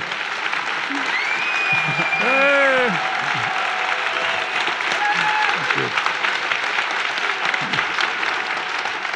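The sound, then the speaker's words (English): A crowd applauds steadily for several seconds, a dense wash of clapping, while a voice calls out briefly and a few whoops rise above it. “And now it's actually kind of an experiment what you're going to do when you applaud.”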